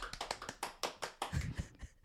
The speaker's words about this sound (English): So let's just give a little round of applause for that.